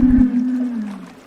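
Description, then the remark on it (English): A whale-like sea creature in a film lets out one long, low moaning call that slides gently downward in pitch, opening with a brief deep rumble. The call is fairly loud, with no talking. “I felt for that sort of sad-eyed sea creature far more than I cared about what happened to any of the cat or fish people in this film.”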